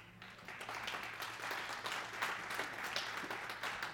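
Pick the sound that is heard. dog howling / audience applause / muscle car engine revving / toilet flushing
audience applause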